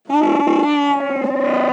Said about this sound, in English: Well, and that brings us to our next sound, right? The Chewbacca howl.